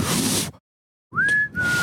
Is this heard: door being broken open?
no